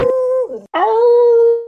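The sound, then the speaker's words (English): A dog of unknown breed howls loudly in an intro jingle, in two drawn-out, wavering notes, the first dipping and breaking off before a longer, steady second howl. No one speaks. “I don't know what breed of dog that is howling in the intro to game releases.”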